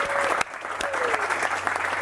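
A crowd at an F3 gathering applauds the man who brought the F3 gear store, with steady, dense clapping that fills the whole moment, a few sharper individual claps standing out and faint voices mixed in.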